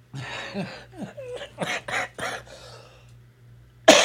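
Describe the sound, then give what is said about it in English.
A run of several harsh coughs in quick succession, preceded by some raspy throat noises, followed by a short quiet pause and then a sudden sharp knock. “Well, I'm going to hear some crunching and some coughing today.”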